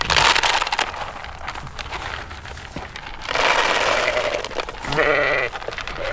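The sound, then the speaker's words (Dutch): Sheep bleat amid a busy, rustling, crunching din as a shepherd feeds the flock in a wolf-proof fenced pasture in Nunspeet municipality, several voices overlapping, with one clear, wavering bleat rising loudly near the end. “komt toevallig de schaapsherder even aangereden om de schapen voer te geven.”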